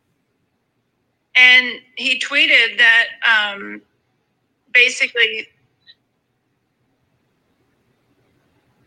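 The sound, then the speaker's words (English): A single voice speaks in short, choppy fragments that drop abruptly into dead silence, as if the connection keeps cutting out, leaving the last few seconds completely empty. “you're cutting in and out. We are getting a lot of blanks.”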